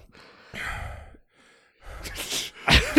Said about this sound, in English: It's like heavy breathing.